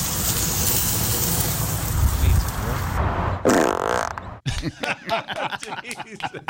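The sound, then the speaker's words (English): Seasoned chicken sizzles on a backyard grill on a mid-June night, a steady crackling hiss for a few seconds, followed by a brief low rumbling noise and then people talking. “Beautiful mid-June night out in the backyard grilling some chicken, did all the seasoning, smells good. Listen to the sizzle.”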